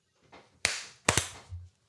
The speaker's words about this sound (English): Boom. Clap. Hard clap.